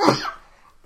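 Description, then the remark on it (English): A single sharp cough bursts out loud, then trails off quickly into quiet; no talking accompanies it. “sneezing and coughing on this”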